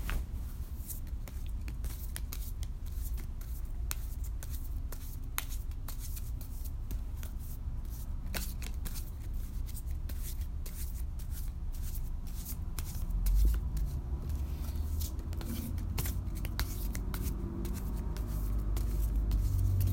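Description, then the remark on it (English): Steady shuffling of a deck of tarot cards before drawing three cards for a reading, with rapid papery flicks and soft riffling repeating continuously, over a low background rumble and no talking. “I'm just going to shuffle real quick and then draw. I'm going to be drawing 3 cards from this deck.”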